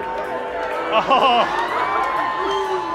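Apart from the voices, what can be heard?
audience booing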